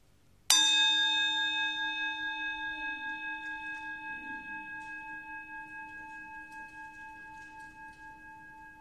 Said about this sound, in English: Listen very quietly to the chime until it makes no more sound at all, and then listen just a little longer after that.